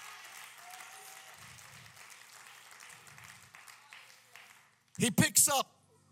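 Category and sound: crowd, audience clapping hands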